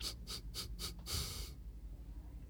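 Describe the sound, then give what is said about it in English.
Breathing picked up by a microphone: four quick, airy breaths in a steady rhythm, then one longer, louder exhale, followed by quiet background noise. No one speaks. “Why can I hear my breathing?”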